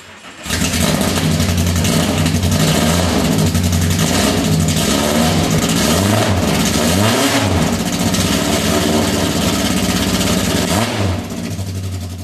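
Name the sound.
car engine revving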